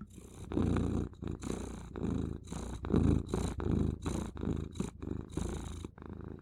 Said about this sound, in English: It's always just purring. No words with you, huh?